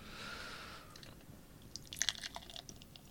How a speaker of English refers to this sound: The lovely sound of a good pour. Thank you, friend. This is red. Got a nice color.